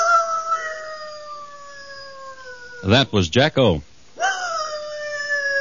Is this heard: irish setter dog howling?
yes